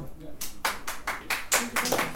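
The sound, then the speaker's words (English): A brief round of applause from a small audience at a poetry reading, welcoming the next poet to the mic, the claps landing in a quick, fairly steady rhythm, moderately loud, with no one speaking over it. “Frank is an applaudable poet.”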